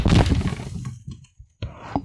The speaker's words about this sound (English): I just fell in the chair. I just broke something. I got to get up.